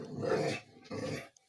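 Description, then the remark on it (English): A dog growls at a squirrel outside in two rumbling bursts separated by a short pause, fairly loud, with no one speaking over it. “Anyway, ignore the growling at the squirrel.”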